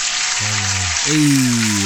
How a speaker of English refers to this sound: I was gonna have the applause lined up, but I came late. Let me give you the proper applause that you deserve.